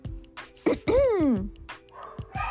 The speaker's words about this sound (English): I do apologize if it sounds like I'm shouting at you. I can't hear my own voice over all the barking.